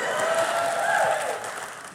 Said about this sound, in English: But I gotta know by show of applause your favorite part, okay?